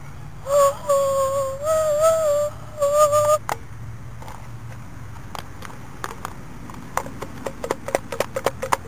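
Sharp hoofbeats of a horse galloping past on McLaughlin clatter on a hard surface, sparse at first and then quickening into a fast rhythm. They follow a few seconds of high, wavering sustained tones. No one speaks.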